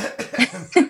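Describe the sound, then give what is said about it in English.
Someone clears their throat in a quick series of short, raspy bursts, ending with a louder, sharper one; no talking. “I have to clear my throat.”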